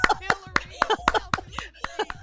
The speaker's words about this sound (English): There you go, clapping uncontrollably.